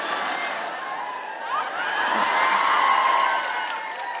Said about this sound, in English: You're applauding a little too loudly for that.